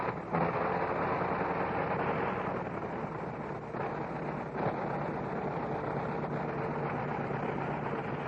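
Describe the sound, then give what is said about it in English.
A Liberty 425-horsepower aircraft engine roars steadily, a dense, rough, throbbing drone that fills the whole clip at high volume with only slight dips in intensity. “I'm going to let you turn up your gain, turn up your receiver gain, and you can hear the sound of these 425 horses on this great Liberty engine.”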